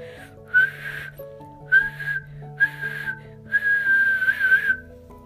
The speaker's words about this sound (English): Far above them at the mine's entrance, the end of the day whistle blew.